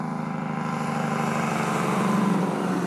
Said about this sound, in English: Nice. A little orange gravel truck just drove by me.